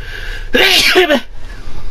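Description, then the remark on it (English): A single loud sneeze bursts out in a sharp, breathy rush lasting under a second, with quiet before and after. “Just thinking about it brings her out the sneeze.”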